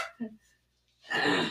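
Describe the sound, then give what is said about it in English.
A woman imitates a dog barking: a short yelp-like vocal burst, a brief pause, then a louder, raspy bark-like yap. “Girl, what you supposed to be a poodle?”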